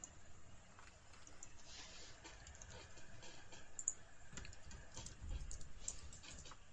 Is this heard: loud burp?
no